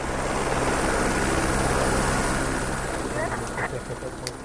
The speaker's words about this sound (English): Within minutes, a helicopter approaches us as we walk down from the pipeline route and onto the village soccer field. Suddenly, we realize the chopper is landing. Kids abandon their game and scatter. Everyone's hair is flying in the rotor wash.